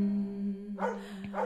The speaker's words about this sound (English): Oh, the dog bark at the end is quite triggering, I gotta say.